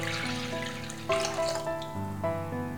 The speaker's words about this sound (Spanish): En primer lugar, poner el agua tibia en un bol.